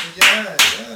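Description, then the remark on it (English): Two sharp, loud hand claps about a third of a second apart, each with a bright, hissy burst that fades quickly, over a faint murmur of voice underneath. “I mean, put that applause on that one.”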